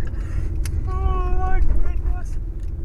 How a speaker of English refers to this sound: This car's the worst at making sharp turns like this in a parking lot.